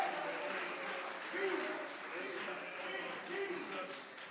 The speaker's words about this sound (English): Come on, let's clap our hands unto the Lord. Come on, church, clap your hands. Worship the name that's above every name, both in heaven and in earth.